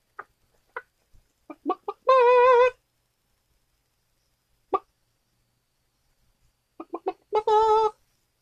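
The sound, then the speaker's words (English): A little pet rooster clucks in short, sharp bursts, then lets out a loud, drawn-out squawking call. The pattern repeats twice, with quiet pauses between and no talking. “Come on, I want to sing with my chicken. My little rooster.”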